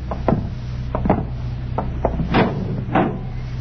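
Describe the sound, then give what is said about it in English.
A wooden door a few steps up is handled in pitch darkness: a series of sharp clunks and latch rattles as it is opened and pushed shut, over a steady low hum, with no voices. “Just a few steps up and another door.”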